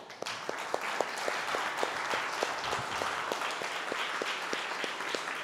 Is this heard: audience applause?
yes